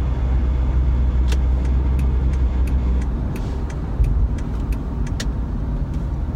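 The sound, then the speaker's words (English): Steady low rumble of a car interior while driving, with a string of sharp, irregular clicking or ticking noises repeating over it, loud, with no voices. “And what is going on with my car right now?”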